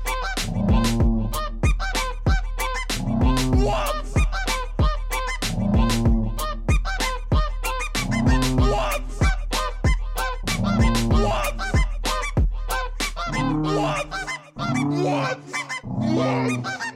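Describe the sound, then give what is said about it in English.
Loud, goose-like honking repeats in a steady rhythm, about a dozen nasal, mid-pitched honks mixed with sharp clicks, with no talking over them. “Are you honking, baby?”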